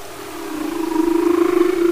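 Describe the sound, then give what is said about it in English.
A humpback whale in Glacier Bay National Park, Alaska, gives a drawn-out tonal moan that rises slowly in pitch and grows louder, with a faint pulsing quality and soft overtones, heard alone against a quiet underwater background. “That was a humpback whale in Glacier Bay National Park, Alaska.”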